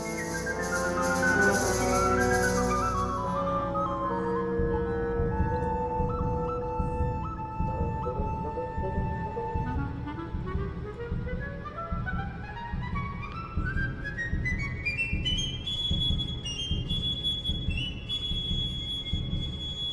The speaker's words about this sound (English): The recorder gets a sort of cadenza at 2:14, playing split harmonic tones. It's a cool sound. Let's hear it.